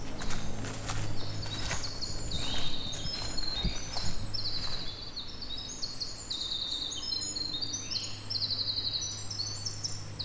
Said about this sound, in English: The winter wren has a very extensive song, goes on for 9-10 seconds. One of the few birds that does that.